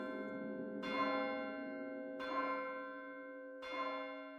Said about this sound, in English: As her soul left her body, the church bell in the valley rang out 12 times.